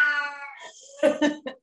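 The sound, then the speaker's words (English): A male cat lets out a long, drawn-out meow followed by a few shorter, clipped vocal bursts, fairly loud, with no talking over it. “Excuse the kitty.”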